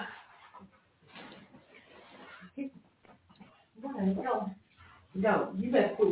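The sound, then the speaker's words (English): A dog whines in short, high-pitched bursts that come and go, growing louder toward the end, with someone talking. “No, you better quit whining. No. Okay, I'm sorry about this. I had to let the dog out.”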